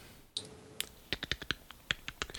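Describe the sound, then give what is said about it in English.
Rapid, irregular clicks of typing a message to someone on a computer keyboard, fairly crisp, with a dozen or so keystrokes in quick bursts and no one talking. “I'm typing to him.”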